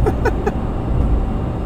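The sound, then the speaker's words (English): Steady, muffled low rumble of road noise inside a truck cab, heard over a phone line, continuous and fairly loud with a few faint brief tones near the start. “Are you podcasting or does it sound like you're in an airplane? Because you're talking through the truck.”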